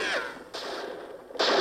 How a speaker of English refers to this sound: Not for nothing, but the gunshots ring distinctly of Disneyland